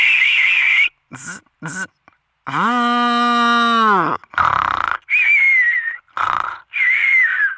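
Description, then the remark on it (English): A voice imitates a sequence of sounds: whistly bird chirps, quick raspy zipper-like bursts, then a long buzzing harmonic drone like a vacuum cleaner, followed by more wavering whistles and breathy noises. “A bird opening a zipper and then turning on the vacuum cleaner before taking a nap.”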